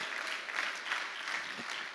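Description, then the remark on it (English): Steady, dense applause from an audience for a group of discipleship training graduates, a continuous wash of many hands clapping at an even, moderate loudness throughout with no voices standing out. “Hey, wild applause.”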